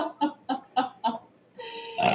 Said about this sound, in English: And then you belch. Yeah, I belch.